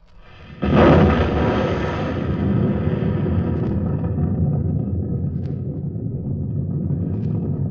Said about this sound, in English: There it goes. There it is. You'll hear the sound of the explosion any second now.